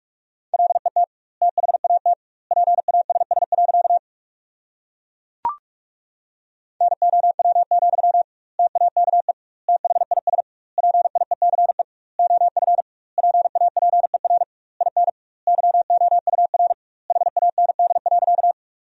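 Fast Morse code practice at about 45 words per minute with double word spacing, sending sentences made from the top 400 words: a single steady mid-pitched beep keyed in rapid bursts, grouped into words with clear pauses between them, plus one sharp click partway through.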